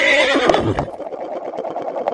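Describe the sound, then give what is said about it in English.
A loud horse whinny with a light plastic clack partway through, from a plastic cup dropped from 2 centimeters onto a kitchen bench, then fading into softer, fluttering snorts. No one speaks. “So the editing noise in this episode is going to be a horse dropping a plastic cup from 2 centimeters onto a kitchen bench.”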